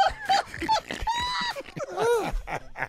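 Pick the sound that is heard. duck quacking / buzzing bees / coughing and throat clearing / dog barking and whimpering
dog barking and whimpering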